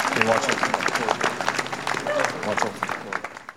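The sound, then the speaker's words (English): A crowd at a Remembrance Day cenotaph ceremony applauds steadily as a Korean War veteran approaches the cenotaph to watch his wreath be laid, many hands clapping in a dense, even patter that holds for a few seconds, with murmuring voices mixed underneath. “He even garnered applause when he approached the cenotaph to watch his own wreath be laid.”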